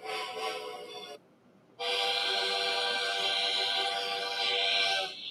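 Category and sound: vehicle, train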